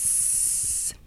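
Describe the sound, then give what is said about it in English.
A person imitates a snake, as an early learning-to-listen sound practiced at a mural, with one steady, sharp hiss lasting just under a second, loud and unbroken, then cutting off abruptly into quiet. “And so they'll say, hey, do you see that snake over there? What does the snake say?”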